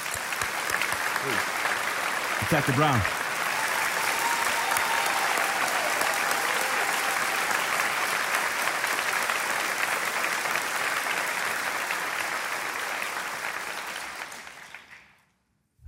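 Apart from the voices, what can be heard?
audience applause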